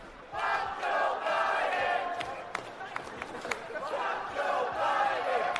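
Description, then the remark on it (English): A crowd at a food court chants "Fuck Joe Biden" loudly in unison, voices rising and falling in repeated rhythmic phrases, with sharp handclaps scattered through the noise. “Chanting, "Fuck Joe Biden."”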